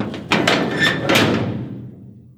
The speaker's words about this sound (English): I got up, looking for a way to run out of a room, but she blocked my path and then bolted the door.